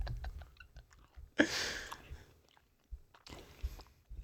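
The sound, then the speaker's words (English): Crunchy chewing of a peanut butter snack, with a loud bite near the start, then steady mouth noises and a second crunchy burst near the end, no talking. “Chew it and tell me what it tastes”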